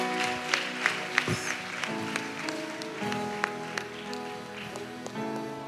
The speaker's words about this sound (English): Clap for Jesus.